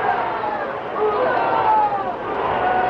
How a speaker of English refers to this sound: He handled his muleta in a way that brought the enthusiastic crowd screaming to its feet.